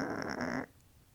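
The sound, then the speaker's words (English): A person makes a short, raspy growl with their voice, imitating a growling house elf, a single rough snarl lasting just over half a second and then cutting off into quiet. “I'm trying to imagine like a growling house elf, like a.”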